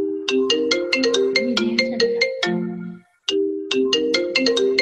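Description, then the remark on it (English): A phone ringtone plays a bright, repeating melodic pattern, loud, pausing briefly before starting the tune again. No one speaks over it. “Oh, I don't know why that's ringing. That's weird.”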